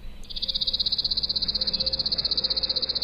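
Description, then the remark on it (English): A chipping sparrow's dry, rapid trill played at regular speed: a long, even run of fast identical high chips at a steady pace and volume, continuing without pause after a brief start, with no talking. “So just quickly, here's the chipping sparrow at regular speed.”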